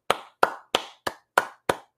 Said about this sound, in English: My man Brian says, can't blame a man for cashing in on his popularity. Brian gets a hand clap.